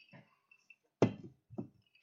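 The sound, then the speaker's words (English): A glass clinks against a metal Rainier beer can twice in a cheers toast, the first knock sharp and loud, the second a softer tap, with faint high ringing between and no talking. “You can't cheers glass to a Rainier can.”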